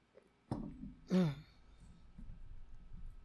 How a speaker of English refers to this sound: Uh-oh, here we go. Here comes Tara Jr. Come on. Come on. All right, these cats are driving us all crazy tonight.